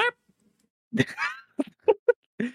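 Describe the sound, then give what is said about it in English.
A series of nasal, honking quacks from a duck, one at the start, then a cluster of short bursts with brief gaps, fairly loud and with no voices. “And the duck goes, boom.”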